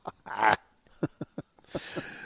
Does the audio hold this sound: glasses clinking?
no